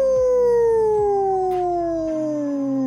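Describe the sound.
A person imitates a wolf howl with a single long, loud call that slides steadily downward in pitch for about three seconds.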